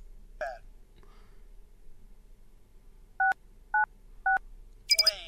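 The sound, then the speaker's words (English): Three crisp keypad beeps in steady succession as the code 6, 9, 6 is punched into a keypad in a video game, loud, followed by a brief higher electronic chirp; a short vocal-like sound comes near the start. “The code is 6, 9, and 6. Enter that code into the keyboard.”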